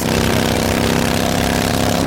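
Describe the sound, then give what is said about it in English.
A motorcycle engine roars loudly and steadily, a dense, buzzing drone that holds without a break for a couple of seconds, with no voices. “And this is how that same commercial sounds on your motorcycle.”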